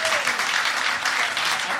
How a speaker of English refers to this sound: Ladies and gentlemen, round of applause